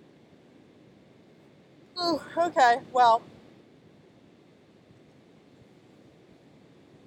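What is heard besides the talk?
ocean waves surf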